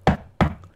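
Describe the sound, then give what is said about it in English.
Two firm knocks on a door, about a third of a second apart, each a solid thud with a short, woody decay. Fairly loud, with no voices. “And there's nothing like, you know, touching a door and going.”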